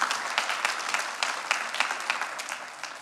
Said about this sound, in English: Amen? Amen. Come on, you can clap. You can do something.